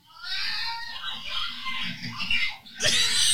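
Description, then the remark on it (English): A bobcat held in a kennel carried by a woman lets out a long, wavering high-pitched yowl that runs for several seconds, rising and falling in pitch, then ends in a harsher, shrill screech. “Look, you hear the cat?”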